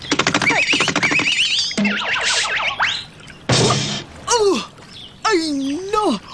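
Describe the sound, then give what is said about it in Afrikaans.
A cartoonish slip and near-fall while running beside a swimming pool on wet, slippery paving stones: loud wobbling, springy boing-like tones and rapid pitch swoops, a sudden noisy crash-like burst, then squeaky sliding tones that dip and rise again. “Val ek my nou amper dusnis.”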